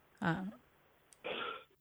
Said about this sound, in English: Sorry, I have to cough. No worries. I understand it.